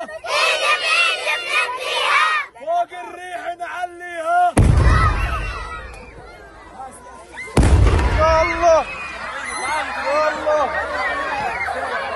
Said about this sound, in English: Al Jazeera, meanwhile, has obtained footage showing the moment that an Israeli strike targeted a car close to an entertainment event for displaced children in Rafah.